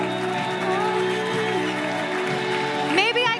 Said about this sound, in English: Thank you, Lord. Yes, we are cheering as they come.